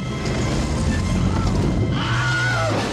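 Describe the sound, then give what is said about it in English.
A short, high-pitched man's scream, the Wilhelm scream effect, cries out near the end over a loud, dense action mix of rumbling, clattering noise and hooves from the film Raiders of the Lost Ark. “Yep, that was our friend Wilhelm in Raiders of the Lost Ark.”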